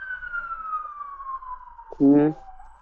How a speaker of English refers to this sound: Can you hear the fire truck? There's a fire truck outside my house. Can you hear there's a fire truck outside my house. Can you hear it?